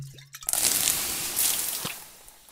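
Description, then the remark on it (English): A sudden wet splash followed by a long, loud hiss and sizzle, like water thrown onto fire, fading out over a couple of seconds with faint dripping. “Oh, give me the water, quickly!”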